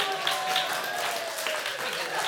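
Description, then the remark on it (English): An audience cheers and claps steadily while rows of the audience race each other down their row, a dense wash of applause with shouting voices mixed in, holding at an even loudness throughout the short stretch. “Cheer on the other rows, come on, here we go.”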